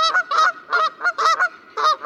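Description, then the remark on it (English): A flock of geese honks repeatedly while whiffling in for a landing, about eight loud, nasal calls in quick irregular succession, overlapping slightly, with no other sounds around them. “Geese Whiffling in for a Landing”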